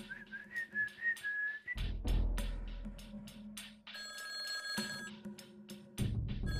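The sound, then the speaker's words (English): A whistled tune opens, then a bright electronic phone ringtone trills in repeated bursts over a low hum, loud, with no one speaking. “And the military was sitting there saying, don't answer, you know, don't answer that phone, whatever it might be.”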